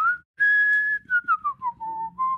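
human body sound, whistling

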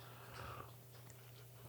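food or drink, sipping coffee

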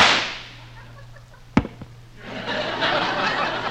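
sound effect, three gunshots

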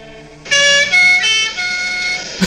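sound effect, siren sound effect

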